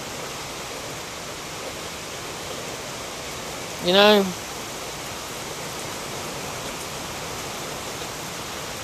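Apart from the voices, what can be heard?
rain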